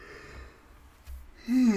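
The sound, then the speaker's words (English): A soft, breathy yawn that drags on for over a second, then swells into a louder voiced, wavering groan near the end. “I just yawned.”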